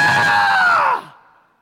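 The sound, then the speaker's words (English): A voice imitates a band fan's shrill, sustained scream, one loud held cry that slides slightly downward and cuts off after about a second, unaccompanied. “I don't know why I'm screaming, but I'm screaming!”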